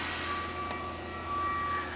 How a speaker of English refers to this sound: This happens every Tuesday, right? About this time. You hear that? It's my trash people picking up our refuse, you know? It's really crazy.